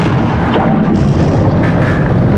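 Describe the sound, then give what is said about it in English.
The great wooden doors of Leviathan Cathedral shatter as a cave hog erupts out of them, in a loud, booming crash that becomes a dense, rumbling roar lasting a couple of seconds, with no voices. “The cave hog erupted out of the shattered remains of the great wooden doors of Leviathan Cathedral.”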